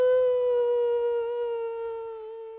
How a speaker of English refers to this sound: We might have heard it a little bit faintly. I put a bit of compression on it. It's an air raid siren, guys.